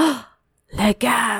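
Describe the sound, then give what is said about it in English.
A voice trails off, then after a short pause lets out a loud, theatrical gasp: a sharp breathy intake with a voiced edge, broken briefly and picked up again, exaggerated. “Le gasp.”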